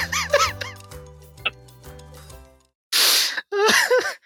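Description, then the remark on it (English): In a comic ad for Dandy Danny's Den of Dandelions, a bright, bouncy jingle of tones gives way to a single loud sneeze, followed by a few squeaky, sniffling vocal noises. “Listen to Lenny Bruce swear about dandelions at Dandy Danny's Den of Dandelions for all your dandelion and sneezing needs.”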